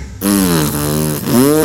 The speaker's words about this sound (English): So as Greg Chalmers tees off on the first hole on the final day, Ian Poulter rips out the biggest fart you've ever heard, and I mean...